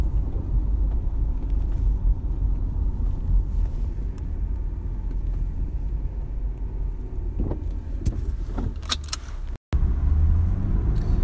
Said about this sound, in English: I am podcasting once again from the car, as I always do. I want to maximize my efficiency in the car as much as possible.